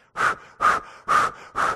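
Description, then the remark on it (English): A voice imitates the heavy panting of a friend running on a track on the final lap: four quick, loud, breathy huffs in a steady rhythm, with short gaps between them. “I could hear him breathing hard behind me.”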